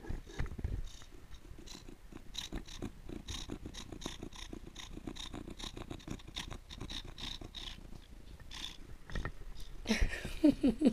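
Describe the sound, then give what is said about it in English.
A cat lying in a lap purrs steadily right up against the microphone, a deep rumbling rhythm of pulsing breaths that stays loud and close for several seconds with no talking. “my cat Dude Bro is in my lap and he is a purr monster”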